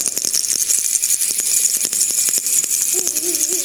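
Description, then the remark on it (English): A group of children ring handbells all at once during a Christmas church service, showing their joy, a bright, continuous jangling clamor with no steady rhythm, and a voice briefly calls out near the end. “All right, now, everybody at one time, show how joyful you are because you have Jesus in your heart. Ring your bell.”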